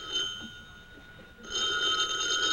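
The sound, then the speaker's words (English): A telephone bell rings steadily with a bright, metallic tone, briefly dipping before ringing again louder and fuller. No voices, just the continuous ring. “Answer the phone”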